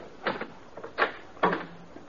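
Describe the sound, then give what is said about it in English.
The door of a rooming house is opened with a few short wooden knocks and rattles of the latch and frame, with no talking in the background. “While you're opening the door, you ain't got a thing to worry about.”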